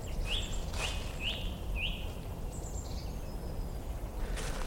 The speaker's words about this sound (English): Just a song thrush there, beginning its soundtrack.